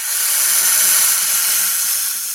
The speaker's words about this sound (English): The great reveal is... It's a snake hiss. A snake.